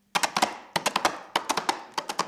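Coconut shells clopped together as a radio sound effect of a horse making a getaway: sharp, hollow knocks in quick galloping bursts of about four beats, repeated four times with short pauses, steady and fairly loud, no voices.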